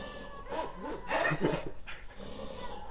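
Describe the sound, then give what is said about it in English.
A dog vocalizes, several short whiny yelps and bark-like bursts in quick succession over about three seconds, with some breathy panting between them and no one talking. “That's insane that you know, these are the friendliest dogs ever.”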